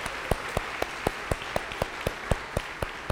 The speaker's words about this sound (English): You're getting a hand before we even know what we're clapping for.